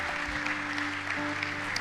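An audience gives a hand clap of thanks to the Lord, clapping steadily in a dense wash of many hands with no pauses, while a low sustained musical chord holds underneath.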